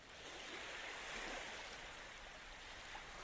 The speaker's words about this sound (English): And all of a sudden you hear the sounds of a shore. The water's lapping at the shore. And it's just shh, shh, shh, shh.